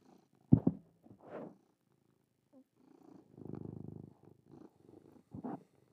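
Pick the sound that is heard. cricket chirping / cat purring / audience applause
cat purring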